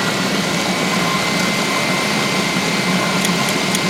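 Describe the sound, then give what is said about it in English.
A 3-horsepower high-power blender runs steadily, heating a mixture up to 120, a loud, even motor roar with a constant whine and no change in pitch or volume. No one speaks. “So now your blender has twice that.”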